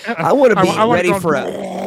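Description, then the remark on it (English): A voice imitates a working bathroom exhaust fan with a loud, continuous growling hum that wavers and dips in pitch for about two seconds, rough and rattly throughout. “I at least want one of those deals where the fan's on anytime the light's on.”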